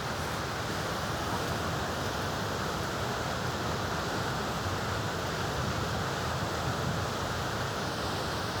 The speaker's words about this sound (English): Actually, gonna show you guys the how powerful the river is, the Niagara River. Look at that.